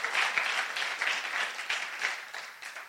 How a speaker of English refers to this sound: Come on, let's give the Lord a good clap offering, amen?